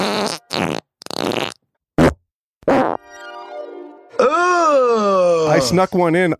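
A run of loud, close fart sounds: a few short sputtering bursts, then a thin buzzy toot, then a long, wavering, groan-like one.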